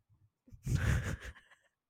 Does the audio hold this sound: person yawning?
yes